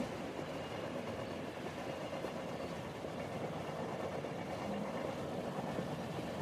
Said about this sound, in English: The train is taking you along for the ride, and to a new and beautiful destination when you rise. So enjoy this time and allow yourself to drift off to sleep as the sleepy train rolls along through the wilderness.